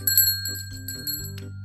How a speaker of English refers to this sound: It sounded like ringing. Daniel looked around to see where the sound was coming from. Daniel walked through his yard past his playhouse until he found Dad Tiger standing next to a shiny red bike, ringing the bell.